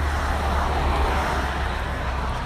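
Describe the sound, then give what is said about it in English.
A loud, rough engine of an old, ragged car passing in traffic rumbles steadily outside, with heavy low-end drone and broad road noise holding constant throughout the short stretch, no voices over it. “Honestly, just, you know, waiting for traffic to go by.”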